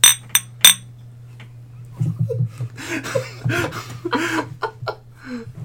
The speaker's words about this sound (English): will you please be so kind and ring that bell.